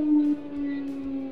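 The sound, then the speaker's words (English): A tornado warning siren being tested wails on a steady, mid-pitched tone with a slight waver, sounding continuously throughout with no other sounds over it. “They claim they have to test it. Ah. Yeah. We get tornadoes.”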